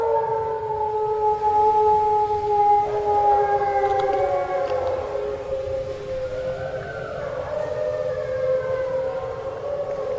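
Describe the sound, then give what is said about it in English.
At night on a hillside at the Endangered Wolf Center in Eureka, Missouri, several wolves answer a call-and-response howl. They howl together in a chorus of long, wavering tones that rise and slide, overlapping one another over a steady low rumble, with no one speaking. “Despite the prodding, the wolves did not need much encouragement tonight.”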